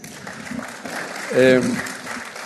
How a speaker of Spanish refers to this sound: Después vino la película, Jacuzzi, y en general gustó a la prensa. Mucho aplauso en el pase, mucho aplauso en la rueda